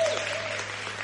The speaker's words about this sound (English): I got 14 claps. The rest of y'all.